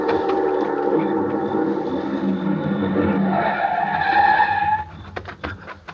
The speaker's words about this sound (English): The car was close now and moving fast.